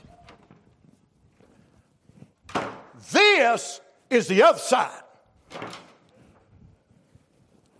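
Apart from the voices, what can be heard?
door being handled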